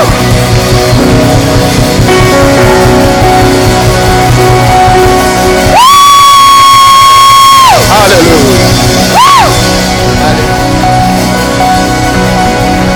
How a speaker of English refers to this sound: The Bible says, clap your hands, clap your hands, clap your hands. Are you people? Shout with a voice of triumph.